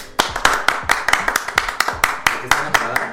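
A short burst of applause: about a dozen crisp, sharp hand claps at a steady, even pace, fairly loud and with no talking over them.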